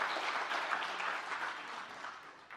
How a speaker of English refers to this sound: Happy Easter, Mission Church. Come on, come on. We can clap for that. We can clap for that.